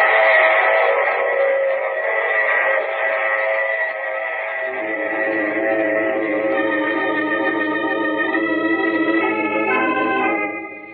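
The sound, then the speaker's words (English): A loud, sustained train whistle holds a steady chord for several seconds while the low rumble of a running train swells in underneath halfway through, then both fade at the end. “Oh, you have to get off here. I'm sorry. But I'm sure we'll meet again. I take this same train every week at the same time.”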